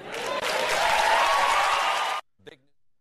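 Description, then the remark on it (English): Loud, dense applause from the studio audience of Colbert's show roars for about two seconds, then cuts off abruptly, followed by a brief snippet of a voice. “So there's the barking, clapping seals in Colbert's audience.”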